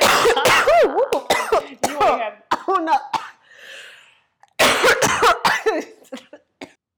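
A loud coughing fit: rapid harsh coughs in clustered bursts, a brief breathy pause, then another round of coughs that trails off into scattered throat clearing.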